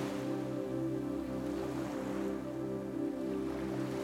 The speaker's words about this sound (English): The waves of the turquoise ocean in front of you is making that gentle whooshing sound, just like your breath.